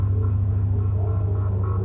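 A low, steady throbbing drone from a piano in a film score, distorted by an ARP 2400 early synthesizer, holding one pitch at even loudness throughout, with faint wavering higher tones drifting above it. No one speaks.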